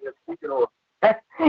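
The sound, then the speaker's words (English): Thin, band-limited voice fragments come through a phone line in short bursts with gaps between them, a speaker's words echoing back over a group call because participants' phones are not muted. “So please, people, mute your phone because you got an echo.”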